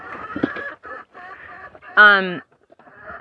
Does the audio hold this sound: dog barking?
no